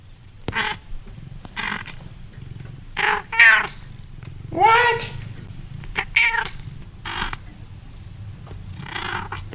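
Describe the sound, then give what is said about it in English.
A cat named Donkey, who sits in a bed by a desk, meows repeatedly and insistently for attention. The meows are several drawn-out, rising calls spaced a second or two apart. A person briefly says a word in between. “Little outburst from Donkey, who sits in a bed by my desk the whole day, just kind of meowing for me to pay attention to him.”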